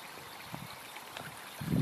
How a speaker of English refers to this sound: Oh, honestly, yeah, I like the sound of this water.